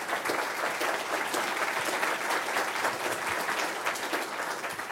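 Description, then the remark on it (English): A crowd applauds the speakers steadily for several seconds after a talk, a dense, even wash of many hands clapping at once with no voices standing out. “So we have, let's give them a round of applause first.”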